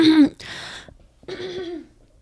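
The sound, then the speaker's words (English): Someone clears their throat and coughs: a voiced grunt, then a raspy burst, a short pause, and a second rough, throaty cough-clear, with no talking. “I'm sorry, I forgot to cough.”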